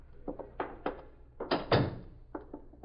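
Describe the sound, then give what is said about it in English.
A front door is handled and opened: a few dull clunks and taps from the latch, a louder rushing swing in the middle, then a couple more soft knocks. “Get the door.”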